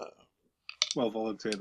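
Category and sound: household object, dice being rolled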